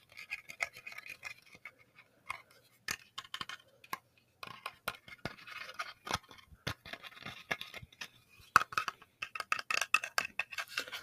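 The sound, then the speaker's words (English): Fingernails scratch over the textured carved wooden beard of a Santa Claus figurine, making dry, irregular rasps broken by sharp little clicks and taps. It is fairly quiet throughout, with no talking. “This is the beard sounds, the wooden beard sounds. It's very textury, very wooden texturized, whatever.”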